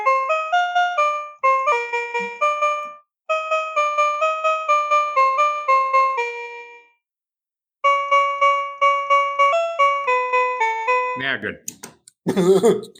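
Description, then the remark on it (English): A Casio electronic keyboard, which takes four AA batteries, plays a quick, bright melody of short plucked notes in bursts with brief pauses, then the sound turns warbly and distorted at the end, like a toy keyboard on weak batteries. “Oh, is my Casio keyboard dying?”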